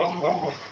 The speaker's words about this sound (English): Your dog's making really crazy noises. He's playing. Don't mind him. Keep going.